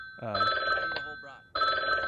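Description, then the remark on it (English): A telephone on a radio show's call-in line rings in two loud bursts of bright electronic trilling, separated by a short pause in which a voice briefly speaks. “We got the phone ringing.”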